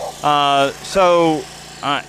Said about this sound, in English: And that sound that we're hearing is a lawnmower. It's not the sound of a race car.